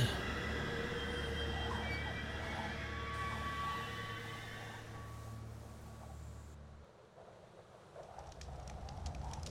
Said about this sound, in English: the Transcontinental Terror, a train from hell that makes a stop through all the stations and crosses